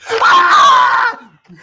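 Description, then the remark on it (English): A single loud human scream, clearly acted by a voice for the character Franklin being pepper sprayed in the eyes, rising and holding a strained pitch for about a second before cutting off abruptly, followed by a faint breathy trailing sound. “Can I do the screaming?”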